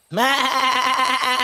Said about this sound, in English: Now, let me say something, that a goat sounds remarkably like a human singing.